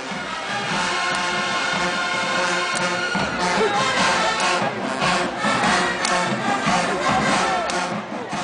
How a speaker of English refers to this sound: To the people watching and screaming their heads off in this video, in that moment, it wasn't about the football game. it was all about the band.